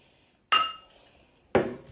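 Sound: glasses clinking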